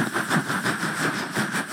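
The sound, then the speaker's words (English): A steady, droning helicopter engine with a broad whine and a faint rhythmic pulsing, holding a constant level throughout with no voices. “And there's the helicopter”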